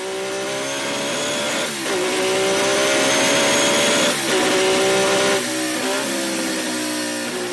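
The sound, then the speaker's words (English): A 1.5-liter vintage racing car engine screams at high revs, loud, its pitch climbing and then dipping briefly at each of several gear changes before winding up again. “It just wants you to wind up the revs and make it scream.”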